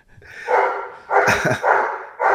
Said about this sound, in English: Every time we go to record, he's ready to just start barking. That's how it goes.